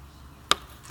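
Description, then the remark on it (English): Two quick gulps as a person drinks water, each a short, sharp wet click, the second slightly louder, separated by about half a second of quiet hiss with no talking. “I don't like to drink water because you hear me gulp.”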